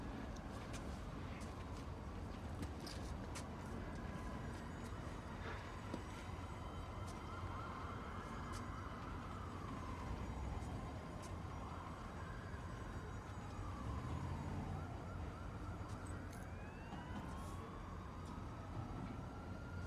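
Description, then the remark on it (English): Approaching police sirens wail in slow rising and falling sweeps, several overlapping, over a steady loud rumble of traffic or engine noise, with no voices throughout. “I'm going to call the next one, which we'll get to, but minute 99, Sirens Approach”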